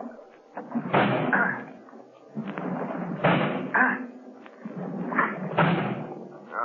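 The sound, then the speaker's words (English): Three heavy, muffled thuds land a couple of seconds apart as a shoulder rams against a solid door in an attempt to break it down, each impact followed by a brief rattle, fairly loud. “I'm going to try to break down the door.”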